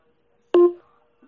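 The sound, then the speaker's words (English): A single short electronic beep from a clock radio alarm that then fails to start playing the radio, a steady mid-pitched tone that starts abruptly and fades quickly, with no talking around it. “Okay, well, for some reason it beeped, but it didn't come on.”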